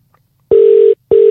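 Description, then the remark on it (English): A telephone ringback tone on the line of a call to Family Voice Australia: two steady, fairly loud electronic buzzes in a short repeating pattern, heard alone with no talking. “I hope it does, because I can see the phone, I can hear the phone ringing.”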